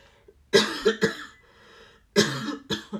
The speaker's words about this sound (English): Sorry, I don't know where this cough is coming from